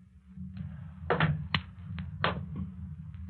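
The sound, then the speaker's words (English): Slow, stealthy footsteps outside a cottage: a handful of soft, muffled thuds and scuffs at an uneven pace, heard alone over a steady low rumble with no voices. “And now the approach of stealthy footsteps outside the cottage.”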